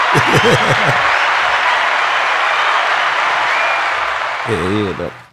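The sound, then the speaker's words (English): A loud, steady applause sound effect fills the whole few seconds like a crowd clapping, with a man's voice talking over it at the start and again near the end as the clapping fades. “Let me get everybody a clap.”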